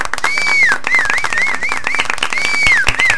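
A loud, dense sound-effect round of applause with many hands clapping rapidly and steadily, while shrill rising and falling whistles cut through the clapping for the whole burst.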